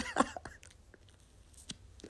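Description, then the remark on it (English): Quiet mouth sounds of someone taking a sip of Tito's vodka mixed with orange juice, a short wet slurp followed by a couple of smaller swallowing clicks, with no talking. “So we're sipping on this.”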